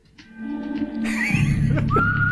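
A whistled melody from a spaghetti western film theme rings out in clear sustained notes over a full, swelling orchestral backing, loud, with no talking.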